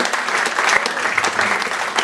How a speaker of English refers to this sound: Round of applause for our friend Damien Callinan right here. And our other guest, Brennan Favola.